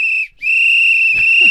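A loud, piercing whistle blast sounds outdoors in a quiet residential neighborhood. It holds a steady high pitch, breaks off briefly, then sounds again in a long sustained blast, with a faint low murmur near the end.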